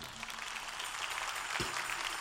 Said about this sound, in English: Clap your hands for her.